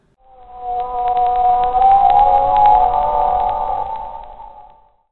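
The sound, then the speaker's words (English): A humpback whale's song in the cold depths of the Pacific Ocean: one long, resonant moaning call that slowly wavers in pitch, swelling up and fading away over about five seconds, with faint clicking underneath. “My brothers and sisters call back to me in undulating and resonant tones. I answer them with a low moan.”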